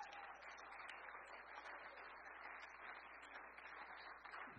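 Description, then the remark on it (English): An audience applauds, a steady, dense wash of many hands clapping that holds at an even level for several seconds with no voices over it. “And we can applaud for God's work.”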